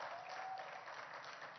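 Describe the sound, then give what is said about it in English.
A church audience claps steadily to celebrate God, a dense patter of many hands blending into a sustained but subdued wash of applause with no voices over it. “That clap is not thunderous.”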